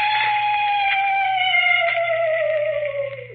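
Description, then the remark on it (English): A banshee scream sound effect made by a ghost character: one long, loud, eerie wail held for several seconds, slowly sliding down in pitch over a faint low hum before trailing off. “Or maybe you'd like to hear a banshee scream.”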